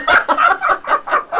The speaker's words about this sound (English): He lulls me a bit with bird song and then he just goes back into it, doesn't he?